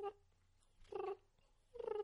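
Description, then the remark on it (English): A turkey call imitates soft, rolling turkey purrs, the natural sound turkeys make while feeding, used alongside scratching in the leaves: two short trilling bursts separated by a quiet gap, with a brief fragment at the very start and no talking. “And just those natural sounds that turkeys make, whether they're feeding, and they purr quite a bit as they're feeding.”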